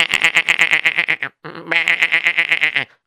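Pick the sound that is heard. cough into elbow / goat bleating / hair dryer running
goat bleating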